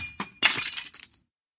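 A sharp glass crash bursts out upstairs in a house around 9:30 p.m., followed by a brief cascade of tinkling, shattering fragments like marbles rolling across the floor, stopping abruptly after about a second; loud, with no voices.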